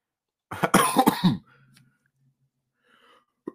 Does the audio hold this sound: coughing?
yes